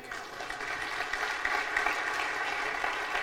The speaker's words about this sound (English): And again, that's not a dollar amount that we're clapping for. That's soul saved. That's a real, real big deal.